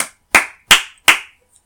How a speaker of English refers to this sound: I said clap, clap. That was enough. Didn't have to actually clap.